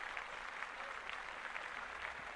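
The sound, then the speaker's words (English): A crowd applauds steadily at a show going live on YouTube, Facebook, Apple TV, Roku, Fire TV and UrbanExcellence.com. Many hands clap in a dense, even wash of sound with no pauses and no voices standing out, holding at a fairly constant level throughout. “Clap that up.”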